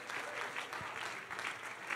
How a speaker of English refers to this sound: Can you clap your hands if you've been baptized in that name, if you've been filled with the wonderful gift of the Holy Ghost?